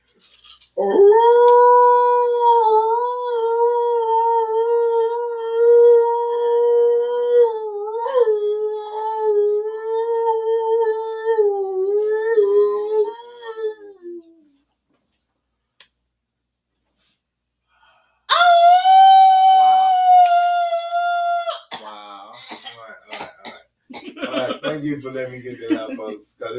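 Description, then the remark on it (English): A person imitates an alpha male wolf, howling back in reply to others' howls: a long, steady, wavering howl for about fourteen seconds, then a second shorter howl after a pause, followed by some breathy vocal noises. “I had heard y'all howl, so I had to howl back because that's what the alpha does.”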